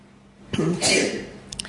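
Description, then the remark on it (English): A single sneeze bursts out, a short intake followed by a sharp, breathy explosion that fades within a second, with a couple of faint clicks afterward. “Bless you.”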